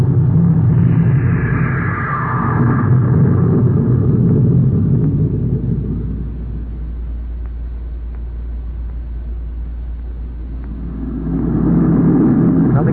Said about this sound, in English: Close port. Fire jet. Fire jet. Up, ship it away.